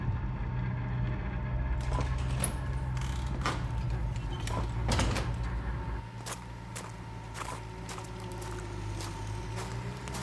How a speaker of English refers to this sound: Wow, what's happening here? Everything is getting dug up. There's a tractor ploughing up and down, and there's somebody over there digging with a spade.